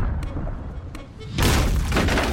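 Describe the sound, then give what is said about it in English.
A low rumbling background gives way to a sudden, loud cannon blast striking a ship, aimed at its cannons, with a sustained splintering crash and roar that fills the rest of the moment. “They're aiming for our cannons.”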